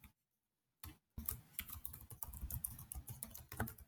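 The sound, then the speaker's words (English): Rapid typing on a computer keyboard as someone types out notes of award predictions, starting after a brief silence, a dense run of crisp key clicks with uneven rhythm and no voices. “So I was just typing all of that out so that way I could make sure that both of us remembered all of this.”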